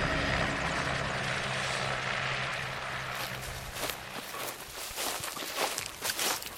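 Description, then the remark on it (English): A helicopter lands, its loud rotor and engine roar filling the air and then fading, giving way to crunching footsteps on rough ground as people scramble over to an ice patch. “The helicopter lands and we scramble over to the ice patch.”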